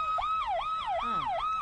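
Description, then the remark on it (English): A police car siren, played from a video, yelps loudly and continuously, its pitch sweeping up and down in quick, regular cycles several times a second, with no voices over it. “Where's the cop car? Did I pass it already? Is this it? Yeah, look at this.”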